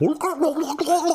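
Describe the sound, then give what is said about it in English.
A man's voice mimics a Sasquatch call, a loud, warbling gargle-like howl with a wavering pitch that pulses in a few quick bursts over about a second. “Now, do I think these cable TV shows with a bunch of old fat guys wandering through the woods going, hold it, hey there, Billy Joe, hey, let me call one of them.”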